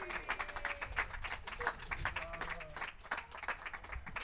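An audience at an open mic comedy set applauds with dense, steady clapping that keeps going for several seconds, with a few voices murmuring faintly beneath the claps.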